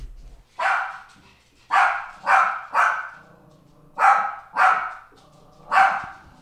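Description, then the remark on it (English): A dog barks sharply six times in uneven bursts, loud, with short pauses between the barks and no talking. “Let me do something about these dogs.”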